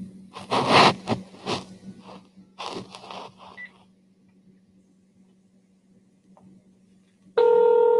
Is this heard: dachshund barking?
no